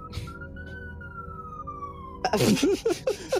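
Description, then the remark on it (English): An alarm set off by a lever: a steady siren tone holds and slowly sinks in pitch for about two seconds, then gives way to a burst of loud, choppy, warbling bursts that sound harsh. “You activate the alarm. Sirens blare.”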